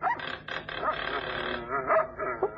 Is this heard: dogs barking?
yes